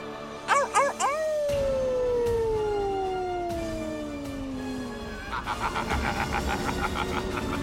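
A wolf lets out one long, mournful howl that slowly slides downward in pitch, preceded by a few quick yelps and followed by a busy, pulsing jumble of sound.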